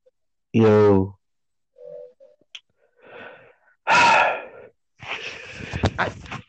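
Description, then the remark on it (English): A loud sneeze bursts out after a sharp voiced gasp and a few quiet breaths, followed by a stretch of noisy rustling and sniffling. “Bless you.”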